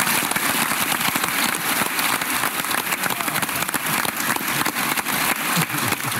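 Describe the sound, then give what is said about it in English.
Sustained crowd applause for the Heisman finalists at the Heisman Trophy ceremony fills the whole stretch, a dense, loud wash of many hands clapping at once with a few sharper claps popping out, steady and unbroken without a pause. “Hey, let's give it up again for these Heisman finalists one more time.”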